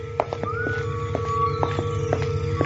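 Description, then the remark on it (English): Steady, evenly spaced footsteps click on a hard surface at a walking pace at night, over a low hum and a thin, sustained whistling tone. “Footsteps.”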